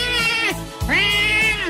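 Two loud, drawn-out meowing calls in quick succession, strained, each rising then sagging in pitch, with a harsh, almost bleating quality and a short pause between them, heard in dark woods.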